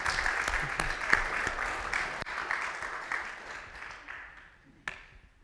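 An audience at Villas Grace Church gives one more round of applause, a dense wash of many hands clapping together, steady for several seconds and then thinning out and tapering off toward the end, with a few sharp louder claps standing out.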